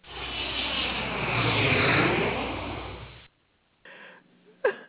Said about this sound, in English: Y'all want to hear another plane? I think that's what it's going to take. Okay, listen.